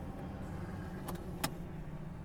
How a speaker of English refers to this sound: Oh, there's a lorry.